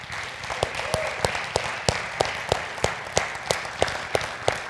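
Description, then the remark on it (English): Steady rhythmic clapping rings out over a diffuse crowd murmur as a church audience celebrates a baptism when the people come up out of the water in the baptism tank, sharp claps landing at an even pace, with no clear cheering. “And if you've not been around for a baptism, we just like to really celebrate when they pop up out of the water. And so cheer, clap, whatever.”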